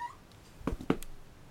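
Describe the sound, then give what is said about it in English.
A dog playing: two short, sharp yelp-like bursts in quick succession, each with a low, throaty core, against an otherwise quiet background with no one talking. “Sorry, the dog's playing.”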